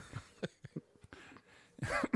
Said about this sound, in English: Excuse me, I got the 100-year cough. Don't mind me.